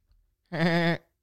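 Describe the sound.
A voice imitates a goat with one wavering, nasal bleat lasting about half a second, loud, with no other sounds around it.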